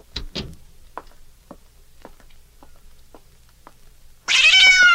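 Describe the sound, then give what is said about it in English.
A cat, Susie, lets out one loud, drawn-out meow, bursting in near the end after a stretch of quiet broken only by faint, scattered taps. “You like that cat, Miss Diane.”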